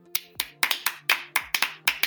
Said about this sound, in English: Clap if you don't care.